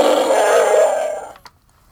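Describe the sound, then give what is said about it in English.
A single loud, gravelly roar made by a person's voice through a toy Chewbacca voice-changing mask, lasting over a second before fading, followed by a brief click and silence. “Let's hear your roar”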